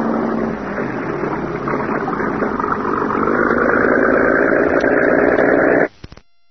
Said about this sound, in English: And within a few minutes, the boat was backed out into clear water. That's far enough, Professor. Now, swing it around and head down the river towards the bay. Stay close to the shoreline.